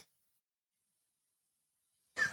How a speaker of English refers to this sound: Had a cough.